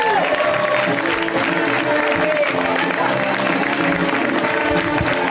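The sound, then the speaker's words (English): An audience applauds as comedian April Richardson is introduced for stand-up comedy, a dense wash of clapping that holds at a constant loud level throughout, with faint cheering and music-like tones running underneath. “Let's hear it right now for April Richardson.”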